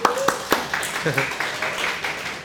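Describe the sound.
A crowd claps steadily in a burst of scattered, warm applause welcoming a person invited up to the front, with sharp individual claps over a continuous patter and a brief voice calling out partway through.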